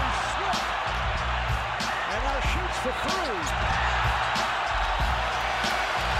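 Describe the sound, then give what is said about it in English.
A steady, loud roar of basketball fans cheering in an arena, with scattered rising whoops, sneaker squeaks and dull ball bounces running through the constant crowd noise. “I don't like to hear the fans cheering.”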